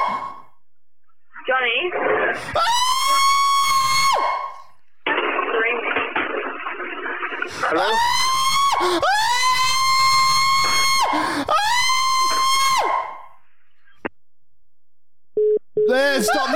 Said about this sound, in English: someone's screaming. That's what I heard. Like I was blocking my ear.